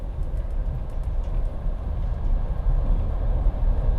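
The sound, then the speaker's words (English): A train starts to move, a heavy, steady low rumble as it rolls along, with faint metallic clicks and rattles near the top end, continuous and fairly loud throughout, with no voices. “The train starts and we say our final goodbyes.”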